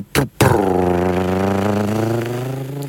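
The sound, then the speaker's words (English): A person imitates a cat purring with a steady, rumbling vocal drone that rattles on for a couple of seconds after two short bursts, fairly loud, sounding somewhat like an idling engine. “So, best cat purring impression.”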